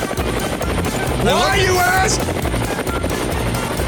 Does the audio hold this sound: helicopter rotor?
yes